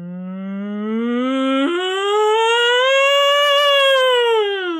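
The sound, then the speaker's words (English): A lone voice imitates an air raid siren: a low hum that jumps upward into a long, loud wail, swelling and then falling away, a little cow-like. “Can you do an impression of an air raid siren?”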